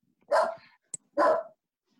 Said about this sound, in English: Man, shut that dog off.